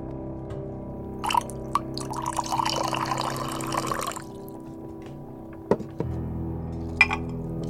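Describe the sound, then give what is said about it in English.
Tea pours into a cup for about three seconds, a bubbling splash that rises in pitch as it fills, framed by a few light clinks and taps of crockery before and after. “Now pour yourself another cup.”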